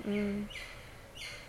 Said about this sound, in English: Yep, the bird agrees. The bird just flew off like, this is some bullshit, I'm out of here.